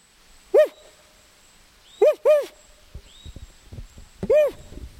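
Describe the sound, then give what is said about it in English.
A man in the Garcia River Forest imitates the call of another owl in the territory with four loud, hooting notes, the middle two close together and the others spaced apart, over a quiet outdoor background. “He waits, but no response, so he reluctantly makes a call like another owl in the territory.”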